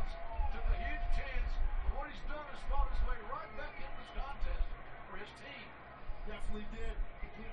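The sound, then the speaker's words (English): Heavy slaps and thuds of wrestlers' bodies hitting a wrestling ring, including bodies coming off the top rope, land repeatedly at an uneven pace, booming low over a steady murmur of crowd noise and indistinct voices. “All you hear is meat slapping and more meat coming from the top rope.”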